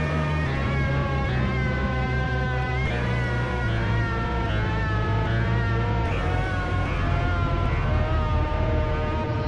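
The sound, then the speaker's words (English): A cat screams and meows nonstop, loud, its drawn-out wailing cries shifting pitch every few seconds with no pause. Nobody speaks over it. “Why is fucking cat screaming at me?”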